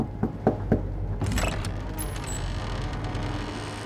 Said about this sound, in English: The door to the great cabin creaked open, and a young man stepped through.